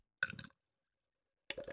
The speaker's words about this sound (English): I'm going to open this and then I'll pour some in the glass and hopefully we can hear the bubbles in that.